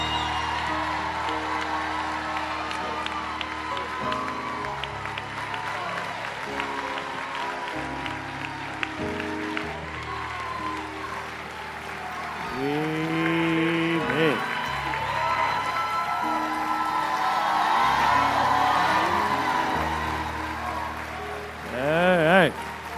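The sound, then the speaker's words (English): The Linked Up Church audience applauds and cheers for Dr. Bill Winston in a steady, dense wash of clapping lasting the whole stretch, with whoops and shouts rising and swelling louder toward the end. “Linked Up Church, I want you to give your best praise, your best applause for the ministry gift of Dr.”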